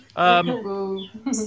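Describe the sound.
A person imitates a bird with a few loud voiced chirps and a drawn-out tweeting call, ending on a short bright burst, with no other sounds around it.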